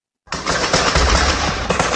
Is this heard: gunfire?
yes